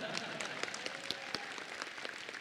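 An audience breaks into applause, a dense, steady patter of many hands clapping at once, fairly soft, sustained for a couple of seconds without a clear break.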